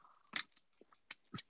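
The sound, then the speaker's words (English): A crisp, loud bite into a crunchy chip, followed by a few sharper crunching snaps as it's chewed, spaced irregularly over about a second with no talking. “I put the chip back in the bag. I didn't like it.”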